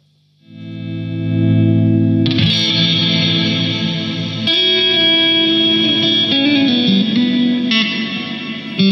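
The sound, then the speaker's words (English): An electric guitar played through an HX Stomp plays sustained, layered chords drenched in digital delay and reverb, with repeating echoes and a shimmering wash that thickens after a couple of seconds; loud, no voices. “A delve into digital. A delve into HX Stomp Digital.”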